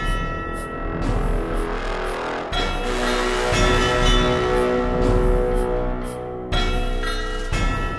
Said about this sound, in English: So let's listen to some bells. Let's listen to some bing bongs, and then it'll be just us talking once again.